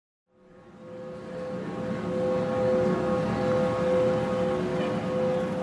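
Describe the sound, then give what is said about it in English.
A steady drone hum from a decades-old sound art installation in Times Square, with no plaque or signage: one sustained mid-pitched tone with fainter overtones, sitting inside a thick wash of traffic and street noise that fades in and then holds constant. “It takes me a second to find the hum I'm looking for, but once I do, I cannot unhear it.”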